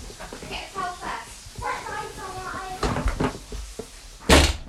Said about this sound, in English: Can you shut the door behind you, please?